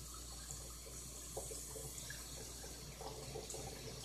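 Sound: water running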